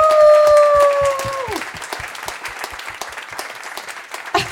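A crowd gives a big warm applause for a guest being welcomed up, with dense, steady clapping throughout, joined at the start by a long, high whooping cry that slides downward and fades after about a second and a half.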